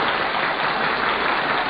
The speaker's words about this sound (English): I love that. Listen to those cheers.